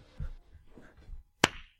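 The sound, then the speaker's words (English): A single sharp hand clap rings out, loud and crisp, after a stretch of faint low murmuring and shuffling, then fades quickly into quiet. “Why did you clap?”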